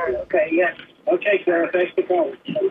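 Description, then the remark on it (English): A radio broadcast heard down a telephone line from a caller's radio playing the station's delayed broadcast, with narrow, tinny speech coming through in steady bursts. “She's on the delay.”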